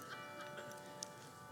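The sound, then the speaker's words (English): A clock ticks quietly, a few soft, evenly spaced ticks with one slightly sharper click, over a faint steady background hum and no talking. “You guys, like, so heavy as the clock strikes ominously.”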